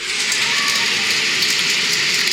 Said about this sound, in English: rain? That's a good one to sleep to. You just need white noise, you know, ambient noise. Something. That one makes me pee the bed. I'm just kidding. So that might be a little too much rain.